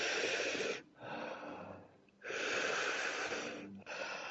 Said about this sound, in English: Nice and soft and gentle breath.